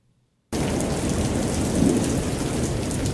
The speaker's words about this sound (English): Still raining. I mean to tell you. This just in, Mr. Briggs. It is raining